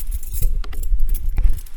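Keys jangle and clink in short metallic bursts while a door is being locked with the left hand, with a low rumble of handling underneath and a couple of sharper clicks.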